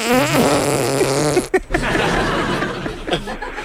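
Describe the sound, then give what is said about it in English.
Body-made fart noises imitate a phone ringtone: a buzzy, pitched melodic pattern of repeating tones for about a second and a half, then a short break and rougher, lower squelching sputters. “Oh, is that your phone ringing?”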